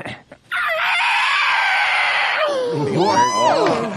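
A saxophone squeals like a screaming pig: a loud, harsh, sustained shriek for about two seconds, then wavering, swooping squeals that rise and fall in pitch.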